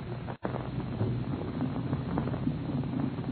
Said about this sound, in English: They are about to take off on their first test flight, and the three powerful engines are softly idling, the propeller blades lazily turning over. The huge airliner looks like a sleek greyhound, eager to be off.